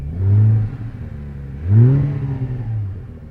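A Porsche 991 Gen 2 GT3 Touring engine idles with a deep, steady rumble while warming up, ticking over at just under 1,000 revs. It then blips the throttle twice in quick, rising revs that swell and settle back, with no talking.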